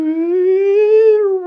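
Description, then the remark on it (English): A voice imitates a theremin with one sustained, wavering hum that glides slowly upward and then eases back down, steady and fairly loud, heard alone for about a second and a half. “That's a pretty good imitation.”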